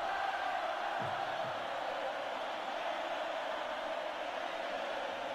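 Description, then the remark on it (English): A large crowd chants in unison, like a soccer chant, as a band comes on stage; a dense, steady roar of many voices that fills the whole stretch at a fairly loud, even level without a break. “And the crowd, as they come on, they chant.”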